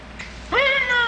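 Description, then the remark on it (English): A single drawn-out cat meow starts abruptly midway and holds steady to the end, fairly loud, with a faint soft background before it and no voices. “Purr for me, kitty.”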